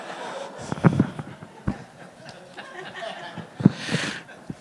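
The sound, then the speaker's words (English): Sparse, uneven clapping from a small part of a crowd, a few scattered claps rather than full applause, mixed with light chuckling and murmurs. “Crouching partial applause.”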